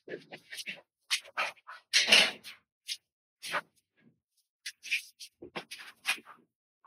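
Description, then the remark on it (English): A young chocolate Labrador puppy named Cash, in kennels, makes a string of short, sharp yips and scuffling noises at an irregular pace, moderately loud, with brief silences between bursts. “And this is a video in the kennels with a chocolate lab puppy named Cash”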